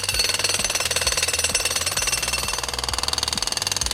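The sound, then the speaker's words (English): A voice imitates a jackhammer with a rapid, sustained rattling buzz of fast, even pulses that keeps going without a break, loud. “Oh, I love it when I get to be the jackhammer.”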